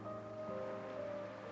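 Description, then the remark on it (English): A soft, steady wash of ocean waves, faint and continuous, blended with a sustained low musical drone and no voices. “The natural rhythm of the ocean and her breath rise and fall as one.”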